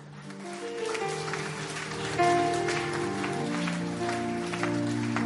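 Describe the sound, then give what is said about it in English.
A crowd claps in a steady, dense patter that lasts the whole stretch, mixed with sustained keyboard-like musical tones underneath and no one speaking. “Oh, those of you who are not clapping, I'm so disappointed.”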